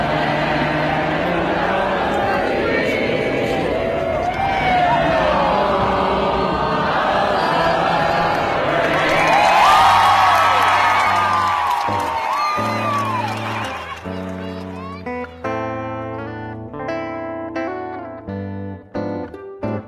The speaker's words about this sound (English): They burst into song after the announcer said that they wouldn't be playing the national anthem.